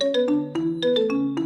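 A phone ringtone plays a quick, bright electronic melody: a string of short tuned notes stepping up and down in a steady rhythm, fairly loud with no voices.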